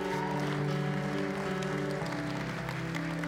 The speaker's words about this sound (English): Come on, give him a hand clap of praise in this house.